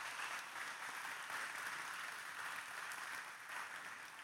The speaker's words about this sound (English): They wanted to give back, take time out of their summer to practice, prepare, and play for you guys today. So if you would, could you give a round of applause for all three of those?